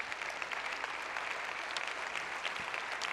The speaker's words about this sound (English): Let's give the Lord a clap offering, would you?